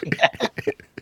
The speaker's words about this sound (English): And clearing your throat.